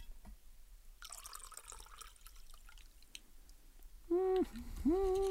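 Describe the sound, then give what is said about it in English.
Wine pours into a glass, a steady splashing, trickling stream lasting about three seconds, followed by a brief, loud wavering tonal sound at the end. “Well, just pour the rest, I suppose. Level that out.”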